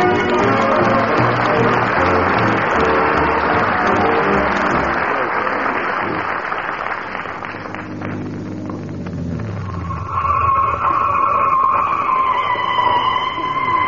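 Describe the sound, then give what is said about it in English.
A car's engine revs and its tires skid, followed by a long, loud screech from brakes in need of fixing that rises in pitch as the vehicle grinds to a stop at the fairgrounds, with no talking. “Gotta get them brakes fixed.”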